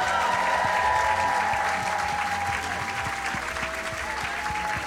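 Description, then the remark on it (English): A live audience bursts into sustained, dense applause welcoming guest Shaparak Khorsandi to the stage, steady and loud for several seconds with a faint tonal hum running underneath. “I think without further ado, can you give a massive round of applause and welcome to the stage, Shaparak, Khorsandi.”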